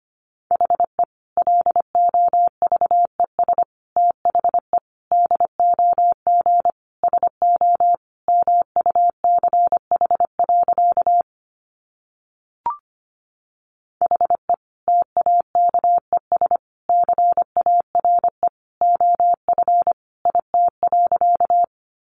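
Morse code sent at about 25 words per minute: a single steady mid-pitched tone keyed rapidly into short and long beeps, with a brief gap and a click partway through.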